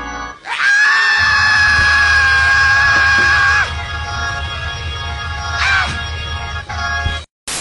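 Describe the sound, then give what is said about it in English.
A loud, sustained high-pitched scream holds for about three seconds during a church service, then a shorter strained cry follows, both over a low, steady rumble of background noise. “Such a screaming spirit in here.”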